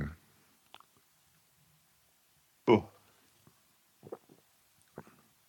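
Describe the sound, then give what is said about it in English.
A single short, sharp sneeze bursts out near the middle, loud. Around it are faint clicks and soft mouth noises. “Bless you.”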